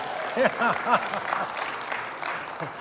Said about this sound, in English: A new road doesn't often get applause, but this one does. That's really nice.